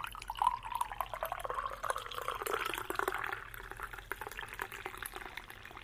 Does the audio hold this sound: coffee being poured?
yes